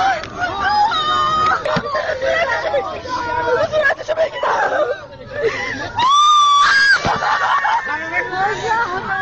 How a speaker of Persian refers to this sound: دختری جوان از میان جمعیتی که به کمک شتافته است راه باز میکند. دستهای لرزانش را بالا میبرد و فریاد میزند: بگذارید صورتش را ببینم. او از صورت زنی که توسط خودروی زیر گرفته شده فیلم برداری می کند و همزمان پشت دوربین زجه می زند.